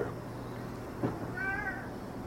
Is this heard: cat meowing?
yes